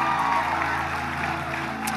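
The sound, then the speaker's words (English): Audience applause for a pastor in a church fills the two seconds, a dense, steady wash of many hands clapping at an even loudness, with a faint murmur of crowd noise mixed underneath. “Let him hear your hand clap.”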